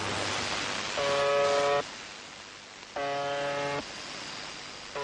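Two harsh, buzzing tones, each just under a second long, sound over a steady hiss of shortwave static, separated by about a second of noise. The buzzes are loud and rasping, rich in overtones. They come from UVB-76, a Russian shortwave radio transmission dating back to 1982 and nicknamed the Buzzer, which sends 25 tones a minute.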